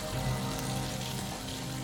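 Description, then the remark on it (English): A fountain that runs all year round, heard in winter, its water running and splashing in a steady, unbroken rush, moderately loud, with no voices over it. “The relentless, monotonous sound of water. This fountain moves all year round.”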